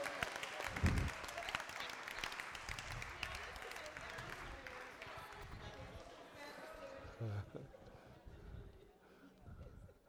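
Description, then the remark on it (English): A church audience claps and cheers during a sermon in a dense, sustained burst of applause, with voices calling out over it before the clapping gradually thins and fades. “With the woman, I thought you would clap today a little bit.”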